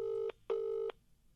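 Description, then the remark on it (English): Two short, steady electronic telephone dialing tones sound in quick succession as a call is placed, each lasting a fraction of a second with a brief gap between, clear with no talking. “We'll ring him and ask him.”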